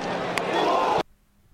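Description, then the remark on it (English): A bat hits a baseball, then a sharp, cracking impact of the ball smashing into someone's face pops out over a loud, dense crowd roar; two hits can be heard. The crowd noise swells slightly, then cuts off abruptly after about a second. “It goes click, click, crack, crack. And then the crowd.”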